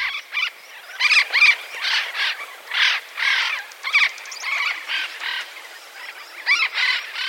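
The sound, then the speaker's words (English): Parrots of a species from the Andes Mountains of Colombia, once feared extinct, give a steady stream of harsh, raspy squawks, more than a dozen bursts in quick irregular succession, loud, with no voices. “This parrot was feared to be extinct in 1997.”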